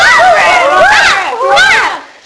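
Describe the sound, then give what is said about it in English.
Several voices together imitate a dog woofing, in two loud, overlapping bursts of rising and falling yelps before trailing off. “Daisy trod on Woof's foot, and he woofed very loudly.”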